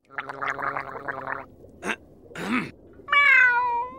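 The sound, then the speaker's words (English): Gary the snail from SpongeBob SquarePants makes a gurgling, warbling cartoon meow followed by two short raspy bursts, then a clear, drawn-out falling meow that sounds sad and whiny, fairly loud with no talking. “Gary being all sad and meowing with this meow.”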